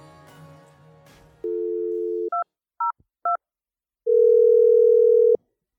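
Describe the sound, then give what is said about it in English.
A steady telephone dial tone hums, then three short touch-tone beeps as a number is dialed for an urgent phone call, followed by another long, loud tone; a brief murmur of background noise comes first. “we had to urgently call you on the phone”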